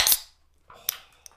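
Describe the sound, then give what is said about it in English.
A beer can cracks open with a sharp, loud pop and a brief fizzing hiss, followed by quieter rustles and a couple of crisp metallic clicks, with no voices. “Well, we're about to find out how sessionable it is. Yeah. Here's our little ASMR moment.”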